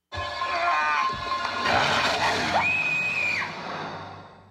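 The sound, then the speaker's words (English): A woman screams loudly in a scene from a TV show, her voice rising and wavering before settling into a long, piercing high-pitched shriek that cuts off abruptly, over a low background rumble. “I would like to play Willow's scream, which I think is incredible.”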